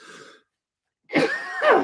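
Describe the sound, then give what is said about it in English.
Harsh, strained coughing after a short silence, two loud raspy bursts with a hoarse, voiced edge, as someone chokes a little on a hot dog that went down wrong. “Crap, I swallowed my hot dog wrong.”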